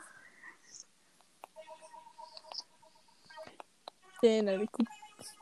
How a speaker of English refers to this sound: Can you hear my fingernails?